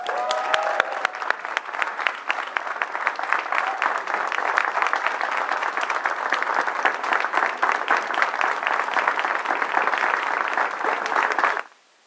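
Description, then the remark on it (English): Sustained audience applause, a dense, steady roar of many hands clapping for about eleven seconds before cutting off abruptly, with a brief cheer or whistle near the start. “Can we give Erica another round of applause?”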